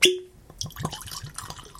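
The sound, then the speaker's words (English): A brief glassy clink rings out, then Ardbeg whisky glugs and trickles into a glass in quick, uneven pulses, with no one speaking. “So let's go and get that poured and see what's so weird about Fur Mutation.”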